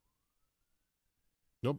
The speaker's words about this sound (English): I hear a siren. Now, whether that's being dispatched to our front yard or not, we'll have to see.